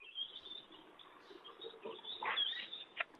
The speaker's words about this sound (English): You're out there with the birds? Having a wander in the garden? Hello. Sounds like a nice part of the world you're in,